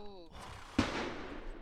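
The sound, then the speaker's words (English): A single loud, sharp gunshot fired outdoors cracks out and rings off into a reverberant, fading tail. A brief bit of voice is heard just before it. “That was a gunshot. It was loud as dick.”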